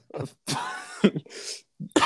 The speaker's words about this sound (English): Making me cough here.